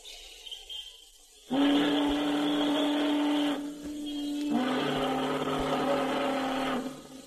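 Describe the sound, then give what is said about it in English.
Two long, loud whistle blasts, each held steady for about two seconds with a brief pause between them, sounding harsh and buzzy rather than pure, with no one speaking. “Whistles.”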